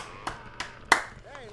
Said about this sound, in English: That was me clapping for me.